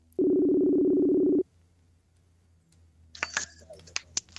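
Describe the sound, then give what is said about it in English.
A single loud, steady ringing tone from an outgoing phone call to a store manager at an Academy Sports store in West Virginia lasts just over a second, followed by quiet and then a few scattered, bright clicks and chime-like blips. “I see Brandon Honecker might be online, so I'm gonna give him a call”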